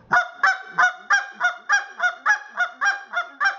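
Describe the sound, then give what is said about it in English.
About a dozen short, bright honking clucks blown on a goose call, repeated in a steady, fairly quick rhythm with no talking over them. “GOOSE CALLING: MEAT & POTATOES CALLING LESSON for BEGINNERS”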